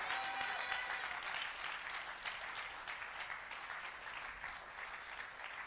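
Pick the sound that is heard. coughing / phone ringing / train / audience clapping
audience clapping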